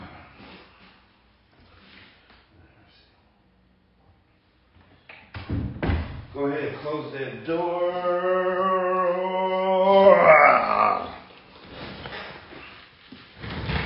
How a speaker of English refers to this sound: I gotta close that door. It's echoing in here a little bit. Should I close that door? Survey says, yeah. Let me go ahead and close my office door.